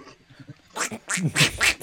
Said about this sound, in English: Quack.